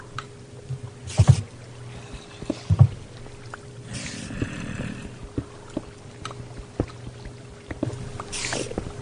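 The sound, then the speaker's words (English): Water flowing steadily in a video game cave, a soft continuous wash broken by a few louder splashing bursts over a low droning hum, with no one talking. “I found water!”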